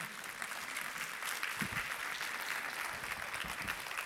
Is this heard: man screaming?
no